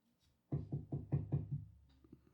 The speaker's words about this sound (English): And there's a knock at your door.